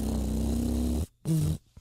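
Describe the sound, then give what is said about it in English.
A person imitates a monkey with a loud, rough, throaty call lasting about a second, then a shorter strained burst after a brief pause. “Nah, maybe I don't know if a monkey would sound like that.”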